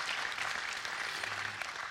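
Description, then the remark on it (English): Steady crowd applause in a church for its older, grey-haired members as they sit down, a dense wash of many hands clapping at an even, moderately loud level with scattered sharper claps standing out, continuous throughout with no voices. “Applause again as they sit.”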